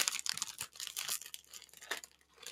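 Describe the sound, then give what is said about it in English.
A crinkly bag of Miss Vicky's sea salt kettle-cooked potato chips is torn open and rustled, with bursts of crackling and crunching as the chips are eaten, in an uneven rhythm and no talking. “I'm going to eat these chips. I have Miss Vicky's not-sponsored sea salt kettle-cooked potato chips. I'm just going to start eating them.”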